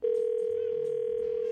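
A steady telephone dial tone hums continuously at an even level while a call is being placed, with faint background voices murmuring underneath.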